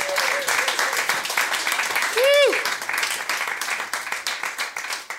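A crowd applauds steadily throughout, a dense wash of clapping, with a brief whoop or whistle rising above it midway and scattered cheers mixed in.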